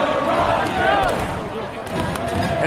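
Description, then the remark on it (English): A loud, dense street crowd at a big evening party in the streets of Ottawa, Canada, roars and chatters while people bang on objects, sharp irregular knocks and clanks cutting through the steady din of voices. “Everybody's banging on something here.”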